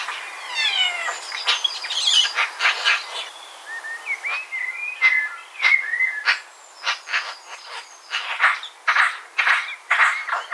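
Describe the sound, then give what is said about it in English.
A magpie chatters softly to itself in a garden, a run of raspy clicks, squeaky warbles and short whistled notes in uneven bursts, moderately loud, with no one talking. “But they also sometimes chatter to themselves, and I always feel honoured when I get to hear it.”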